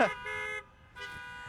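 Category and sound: vehicle, car horns honking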